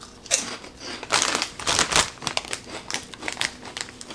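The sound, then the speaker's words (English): Crisp crunching of salt and vinegar pork rinds being chewed, a string of irregular crackly bursts with a few louder crunches, no talking. “That's one thing about pork rinds that I think differs from a lot of snack food, is it's a really crunchy, it's really chewy.”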